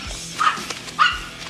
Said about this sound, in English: That piece of scum barking rat of yours is just taking his last stomp on my lawn.